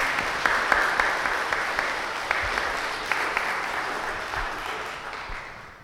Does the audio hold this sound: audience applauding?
yes